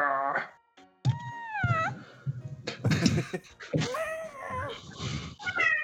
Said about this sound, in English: Oh, meow.